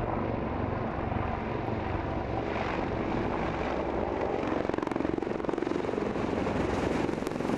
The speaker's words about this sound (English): And to bring us up to date, this is the Army's latest helicopter, the Apache, which we see here on deployment in Afghanistan.